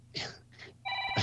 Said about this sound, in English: Did the host phone just go off?